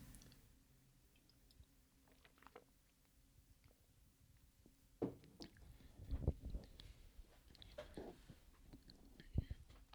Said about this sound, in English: And I'm going to take a sip of some water first.